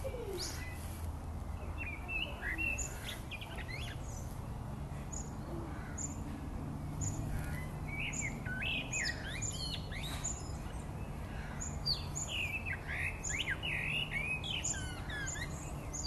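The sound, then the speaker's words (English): Many birds chirp and tweet in overlapping bursts, a busy evening chorus over a low ambient hum, with a soft cooing note mixed in; no one speaks. “That's the sound of the birds at the end of the day.”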